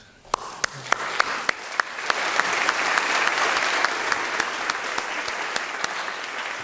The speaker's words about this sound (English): I'm gonna go for another round of applause.